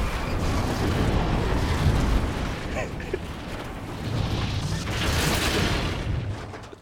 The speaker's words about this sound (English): That, folks, was the sound of a train crash. Apparently. there was some whistling at the beginning, but there's a long pause in between it, so I was like, I'm not going to play that the whole time.